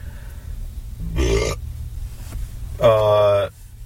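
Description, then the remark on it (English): Two voiced coffee burps with a pause between them; the second is longer and louder, a drawn-out rumbling belch over a low background hum. “That is a coffee burp.”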